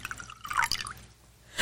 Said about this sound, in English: I shall pour her a bottle, and then I leave the bottle.